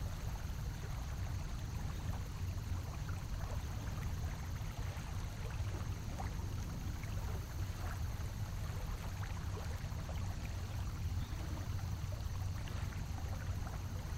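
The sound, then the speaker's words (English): Water flows steadily and continuously, a full, even rush with small splashes and burbles scattered through it and a low rumbling undertone. No one speaks. “We've reached our water destination. Let's stop for a moment. Sit with it and let the water take us back to more memories.”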